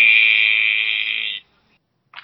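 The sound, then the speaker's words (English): An apartment door buzzer, answering a ring at apartment 2W, buzzes a visitor in with one loud, steady, harsh electric drone for about a second and a half, then cuts off abruptly. A brief burst of noise follows near the end. “So it sounds like somebody's buzzing you in.”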